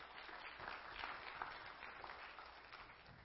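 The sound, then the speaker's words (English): A large church audience at Crossroads applauds together, a dense, steady wash of many hands clapping for a few seconds without pause. “Okay, we can clap.”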